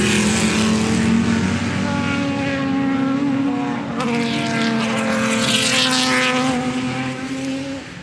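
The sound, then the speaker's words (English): Loud racing engines roar continuously for several seconds, their high whining tones shifting as racing cars sweep past one after another, with no talking over them. “I'm going to let these cars come past.”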